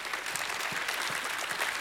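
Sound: audience hand clapping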